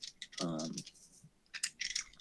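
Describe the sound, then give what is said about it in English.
Dice clicking and rattling together in quick, bright bursts, fairly quiet, with a short voiced murmur early on and more scattered clicks near the end. “who is clicking their dice?”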